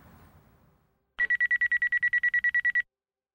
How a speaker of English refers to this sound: It was 3 a.m. when their phone broke the silence